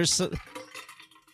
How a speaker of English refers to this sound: Was that a Yeti with like four ice cubes in it and like a little bit of water? It's straight ice. It's straight, ice.